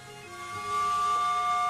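A garbage bag blown like a makeshift bagpipe gives a steady, reedy drone that swells louder, with a thin, high whistling tone joining partway through. No one speaks.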